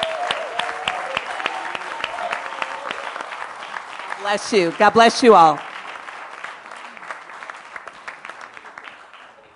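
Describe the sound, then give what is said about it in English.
A church audience applauds its LTS graduates steadily with dense, crackling claps, while a man's voice briefly speaks over the clapping midway before the applause carries on and tapers slightly. “And let's give our graduates a big round of hallelujah.”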